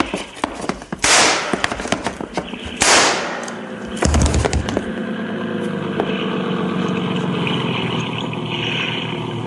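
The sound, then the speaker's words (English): Two loud, sharp gunshots crack about two seconds apart, the first one missing, each trailing off in a brief echo, followed by a deep thud and a steady low mechanical rumble with no talking. “Yancey got two shots. The first one missed me.”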